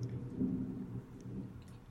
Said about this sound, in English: I wonder if you can hear that thunder. Sound effects, courtesy of Mother Cue Nature. Cue the sound effects. It's coming through Chicago right now.